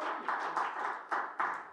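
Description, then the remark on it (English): A group of people clapping their hands together to rejoice in the day the Lord has made, a dense, steady wash of claps with a few louder rhythmic accents standing out, moderately loud with no voices. “Can you rejoice and clap your hands for a moment?”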